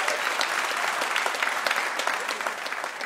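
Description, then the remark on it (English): A steady burst of audience applause for mystery guest Amy Webb, dense clapping from many hands filling the whole stretch at an even, loud level with crisp individual claps poking through. “Please, everybody, give a huge round of applause for our mystery guest, Amy Webb.”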